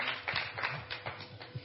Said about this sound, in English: It seems you have forgotten to be clapping. Two people did something, you didn't clap. Let's clap. We have to clap for the three of their souls, so that we can encourage them more to do.